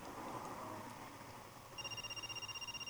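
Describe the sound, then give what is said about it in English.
An office telephone starts ringing partway through, a rapid trilling electronic ring with a fast, steady warble, fairly clear over a busy background hum. “I don't know what, that sounds just like a business office phone, maybe.”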